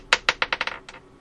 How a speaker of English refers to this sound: What I'm going to do is I'm going to roll my handy 12-sided die, because I have 11 entries. If I roll a 12, I'll just roll again. And I'll roll this dice.